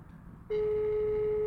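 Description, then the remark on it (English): A phone line's ringing tone cuts in abruptly after a short pause and holds as one steady, loud electronic note, clear over faint background noise, as a call to a woman goes unanswered. “Okay, so she's not picked up her phone.”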